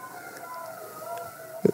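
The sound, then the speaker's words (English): An ambulance siren wails steadily as the ambulance drives by, a loud, sustained warbling tone, followed by a brief thump near the end. “No, it's a ambulance just drove by.”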